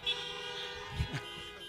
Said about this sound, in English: Do you want to hear what it is? If you want to hear what it is, honk your horn.